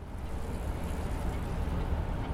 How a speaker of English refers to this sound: To my right, the 5 freeway. Cars idling in rush hour traffic, Griffith Park towering overhead.